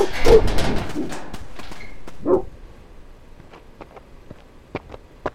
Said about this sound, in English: Are those your dogs? I'm terribly sorry. They ran off before I could stop them.